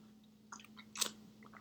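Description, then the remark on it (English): Someone takes a quick sip of water: a few soft, wet mouth clicks followed by one louder gulp, all over a faint steady hum, with no talking. “Let me take some water.”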